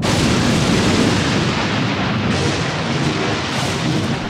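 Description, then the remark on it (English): Loud, sustained rolling thunder, a deep heavy rumble that roars steadily for several seconds without distinct separate cracks, with no voices. “Bolts of lightning struck with frightening intensity and thunder followed.”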